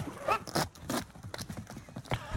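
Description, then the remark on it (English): Hooves clop rapidly and unevenly on the ground as a horse runs away after kicking a tree and farting on a dog, a series of sharp thuds with a brief snort-like burst among them. “Horse that horse kicks tree, farts on dog, and then runs away.”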